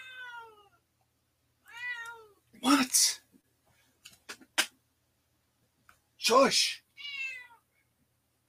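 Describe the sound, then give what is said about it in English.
A cat meows repeatedly in high, harmonic calls, some drawn out and insistent, with a few short clicks between them and a person briefly speaking in a hushed voice. “Crazy ass cat.”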